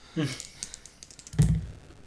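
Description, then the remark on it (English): Dice click and clack as someone rearranges their dice on a tabletop, a scatter of light irregular taps with one heavier knock partway through, and a faint voice briefly in the background. “Okay, I keep rearranging my dice.”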